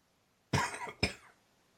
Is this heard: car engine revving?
no